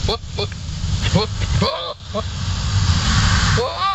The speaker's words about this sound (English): Here is goat mating noises.